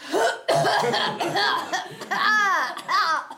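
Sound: exaggerated fake coughing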